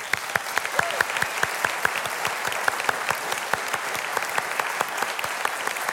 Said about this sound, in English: And we applaud you. And we'll do that now.